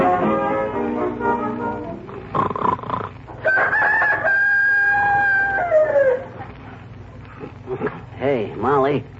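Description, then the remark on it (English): A single drawn-out cock-a-doodle-doo crow, loud, imitated by a human voice, rising then trailing off in a falling wail, with brief vocal sounds and clucking-like noises before and after. “I just heard a rooster crowing.”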